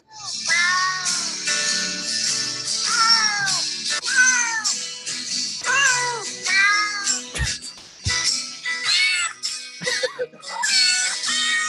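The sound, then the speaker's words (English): Repeated cat meows pitched and sequenced into a bouncy musical tune, loud and upfront over a synthetic backing track, with quick rhythmic meow notes forming a melody. “So I'm going to play a little of the first thing you were just talking about. A little of …?”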